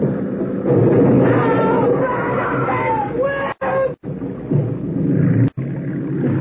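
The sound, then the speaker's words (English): A motorboat crashes into another boat carrying people, including women and children: a loud engine roar fills the scene while shrill cries rise over it, and the noise briefly cuts out twice near the end. “I must have fell out when we hit the boat.”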